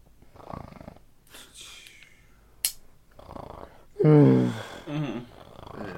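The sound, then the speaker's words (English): A person makes exaggerated, throaty snoring sounds by voice: one loud, rumbling snore followed by a shorter one, with soft breathy noises and a sharp click beforehand. “You're snoring.”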